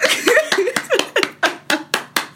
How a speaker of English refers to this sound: I'm going to cue in the clapping.